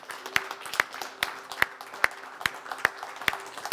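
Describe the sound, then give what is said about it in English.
A church audience claps together in praise, thanking God, in a steady, even rhythm, sharp beats landing about twice a second over a continuous wash of scattered applause and faint crowd noise. “If you want to clap, you want to shout, you want to kneel down.”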